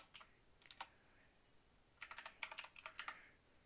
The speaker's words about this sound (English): Sorry if you hear my keyboard.